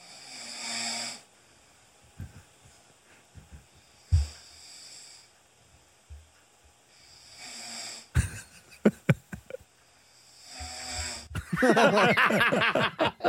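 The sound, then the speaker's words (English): A man asleep on a couch during the day snores heavily, about four loud rasping breaths spaced roughly every few seconds, the last one rattling into a longer snorting gurgle. “My wife recorded me. I fell asleep on the couch one day.”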